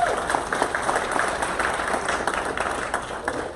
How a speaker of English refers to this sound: So let's give him one more round of applause.